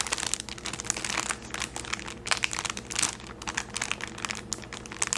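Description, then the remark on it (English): Plastic packaging crinkles and crackles continuously for several seconds, a dense run of sharp, bright rustles at a steady moderate loudness, with no talking. “Also has lovely crinkles.”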